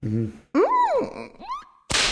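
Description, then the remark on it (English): A succubus video game character's playful voice, a low hum and then sliding, wavering tones, ends in a sharp, loud slap as she slaps her own butt. There is no talking. “Yeah, that's a succubus slapping her ass.”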